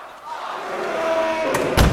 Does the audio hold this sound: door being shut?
yes